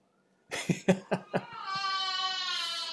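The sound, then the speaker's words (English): A young boy having a meltdown cries, starting with four quick, choppy sobs and breaking into a sustained, high-pitched scream that stays loud until the end. No talking is heard. “And so, do you guys hear this? Am I screaming in my background too?”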